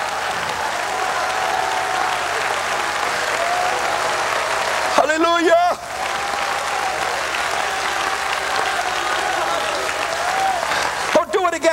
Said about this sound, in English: Would you clap your hands and would you cry Jesus tonight?